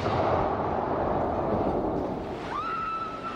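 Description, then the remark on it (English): A massive wagon bomb explodes into a crowd at a street corner in a financial district at 12:01, a dense, sustained roaring rumble filling the whole moment, loud, with a thin rising whistle-like tone cutting through near the end. “It was a massive explosion.”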